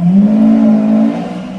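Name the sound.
car engine revving nearby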